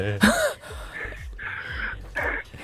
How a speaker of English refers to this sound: Yeah. Are you heavy breathing? Maybe ease up on that. Brown paper bag. Ease up on the heavy breathing there, buddy.